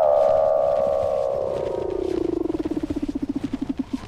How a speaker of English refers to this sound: Weddell seals trill, chirp, whistle, and buzz.